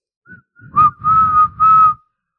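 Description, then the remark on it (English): A person whistles three blasts, imitating a blown whistle: a short faint toot, then two long, loud, steady tones with breathy air beneath, then silence. “Blow the whistle.”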